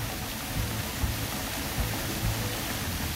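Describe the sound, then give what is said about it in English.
A steady, dense rush of splashing water pours continuously from the Merlion statue fountain in Singapore, a constant hiss with low churning underneath and no voices. “It's the one in tourist pictures on social media, which are either the, hey, I'm in front of the Merlion type, or the meme shot where tourists pose so it looks like the water is spouting from their mouth.”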